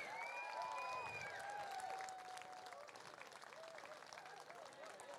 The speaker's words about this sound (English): But give them a huge big round of applause as we get them up onto the stage. A little bit of history being made here this evening.